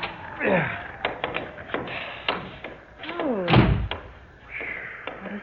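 A door is tried in freezing cold weather, its latch rattling in a series of sharp clicks and knocks, then it creaks and is shoved open with a heavy thud, with no talking.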